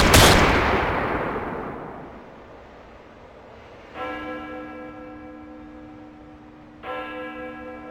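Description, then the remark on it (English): A single loud gunshot cracks out at the start and echoes away over a couple of seconds, followed later by two ringing, bell-like metallic tones. No one speaks. “Was it frigging lights went off and then a few bloody gunshots?”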